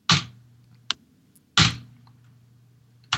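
Someone pounds on a computer keyboard while trying to answer a quiz question: two heavy slams about a second and a half apart, each followed by a lighter, sharp click, over a steady low hum.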